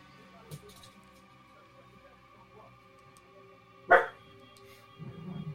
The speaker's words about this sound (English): My dog's barking. I hear that. that's a first. Kind of unusual. Yeah, I was like, that's a first.